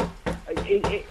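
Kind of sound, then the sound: household object, knocking on a door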